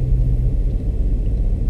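A steady, deep low-frequency rumble inside a car, constant and fairly loud with no voices.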